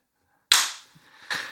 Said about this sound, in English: Did you hear that? Did you hear my clap? It didn't... Oh, it's crisp.